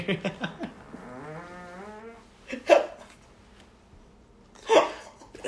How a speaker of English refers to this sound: Beer farts. Dude, beer farts. This is my number two. I shouldn't have beer farts by now.